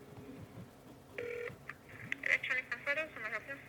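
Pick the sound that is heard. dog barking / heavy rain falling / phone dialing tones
phone dialing tones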